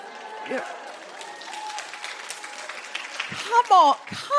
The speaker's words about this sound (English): Don't be cheering that. You're cheering that and being like, oh, thank God, he farmed it out onto a man.